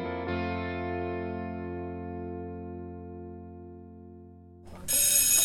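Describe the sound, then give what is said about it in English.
A bell is struck twice in quick succession, its bright, shimmering tone ringing out and slowly fading over several seconds before a sudden burst of harsh, hissy noise cuts in. “Quiet, please, wrong bell.”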